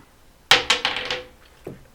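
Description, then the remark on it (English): A die that has a Z in place of a 6 clatters across a hard tabletop: a sharp first hit, then a quick run of rattling bounces that tapers off, followed by two softer taps as it settles, landing on 4. No one speaks. “Okay, it landed on 4, which was...”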